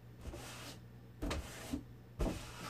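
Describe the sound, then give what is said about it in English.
Several soft, scratchy rubbing strokes as a man wipes the bottom of a closed toilet door after urinating come in uneven bursts with faint background hum between them and no talking. “And he's clearly wiping the bottom of the door directly...”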